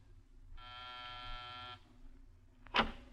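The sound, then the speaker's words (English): A door buzzer, pressed in the corridor of a building in the Miracle Mile District of Los Angeles, sounds once, a steady, harsh electric buzz lasting just over a second, followed shortly by a brief sharp clack, over a faint low hum. “On the afternoon of your arrival in Los Angeles, you walk down the corridor of a building in the Miracle Mile District. Pause and press a buzzer.”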